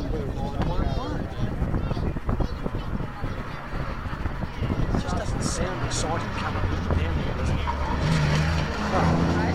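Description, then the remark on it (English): A race car engine with triple SU carburettors and a straight-cut gearbox roars loud throughout, with a gear-driven whine rising in pitch near the end; voices can be heard faintly beneath the engine noise. “Triple SU. Yeah, oh, you can hear them going. Straight cut gears there, you can feel that.”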